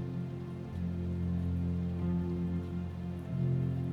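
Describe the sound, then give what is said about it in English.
Steady rain falls in a dense patter of drops, a constant soft hiss with a low humming drone running beneath it throughout. No one speaks. “The water heals, and tonight she comes to you in millions of precious drops of rain.”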